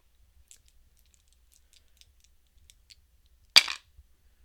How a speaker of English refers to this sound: Well, I'm going to grab the dice here and roll them up, and we'll see where we're going next, and then we'll go over our predictions.